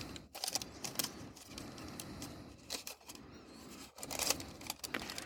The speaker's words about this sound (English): This is the good part right here. That's the parchment paper that's inside the packaging.